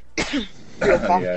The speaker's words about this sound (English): Cough.